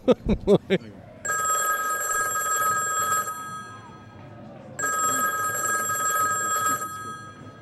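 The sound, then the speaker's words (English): A telephone rings twice in long, steady bursts with a brief pause between them, loud, following a few sharp knocks at the very start. “All right, ring, ring. Bring, bring.”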